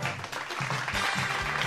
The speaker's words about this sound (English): Thank you. Hold your applause.